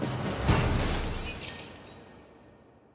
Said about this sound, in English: A brick smashes the glass, and he barricades the window.